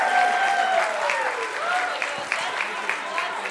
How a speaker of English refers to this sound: Thanks for doing one more round of applause for them as they make their way out of the theater.